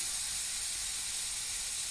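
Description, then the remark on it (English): A steady, airy hiss of a just-opened bottle of 10.2% ABV ale from Boulevard Brewing foaming over into a cup, fizzy and bright, fairly quiet, with no voices. “I'm going to pop my top here. Woo, my top. Oh, there we go. It's a geyser. Oh, shit. It's filling the cup.”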